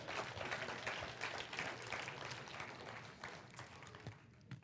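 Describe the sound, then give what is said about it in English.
An audience claps together in dense, sustained applause, many hands blending into a steady crackling wash that thins out and fades toward the end. “Hey, give him a hand clap.”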